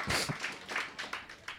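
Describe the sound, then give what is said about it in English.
A brief, quiet round of applause: soft, rhythmic clapping in steady bursts about three times a second, with no voices over it. “That's a round of applause, I think, yeah.”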